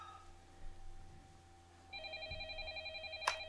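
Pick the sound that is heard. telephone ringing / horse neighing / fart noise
telephone ringing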